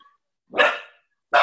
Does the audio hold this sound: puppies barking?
yes